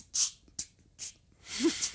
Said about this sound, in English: That was a cough. That was a cough. That's all we got. We got coughing.